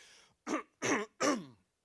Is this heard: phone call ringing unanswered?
no